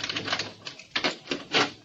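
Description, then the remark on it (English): A key rattles and turns in an apartment door lock, making a short run of sharp metallic clicks and scrapes over about two seconds, with no voices. “I walked up the two flights to my apartment, unlocked the door.”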